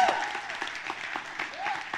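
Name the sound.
audience cheering and applauding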